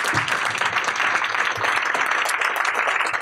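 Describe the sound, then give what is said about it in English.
A crowd applauds an author at a Politics and Prose bookstore event, a dense, even wash of many hands clapping at once that holds at a constant loudness for the whole few seconds, with no voices heard. “So can we get one more round of applause for our author?”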